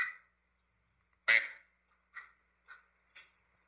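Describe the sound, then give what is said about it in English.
A single loud duck quack rings out, followed by several fainter repeats that fade in turn, like echoes bouncing back. “This is just a dude with a duck?”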